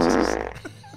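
A loud, buzzy fart sound effect blares for about half a second with a rippling, flapping texture, then trails off into faint sputters. No one speaks.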